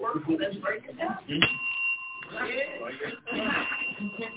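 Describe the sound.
A bell is struck once and rings with a clear, sustained metallic tone that lingers for a moment while people keep talking over it.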